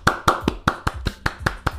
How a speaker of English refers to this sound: Now, why are you clapping? Because I know you don't like either of them. Absolutely. So why are you clapping? Because they're breaking up.